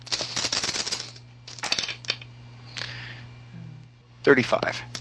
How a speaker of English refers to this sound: And I'll roll my 9 dice.